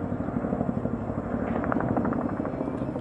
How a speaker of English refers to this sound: Just over 5 weeks after President Biden insisted it would never happen, helicopters were evacuating staff from the U.S. embassy in Kabul, and President Biden was preparing to address the nation.